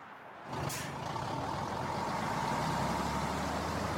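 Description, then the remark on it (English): A tractor trailer truck's air brakes let out a sharp hiss, followed by a steady rumble of the idling engine and a continuous airy hiss. Fairly loud, with no one talking. “I love driving my tractor trailer, and just like you, I just want to make it to my destination safely.”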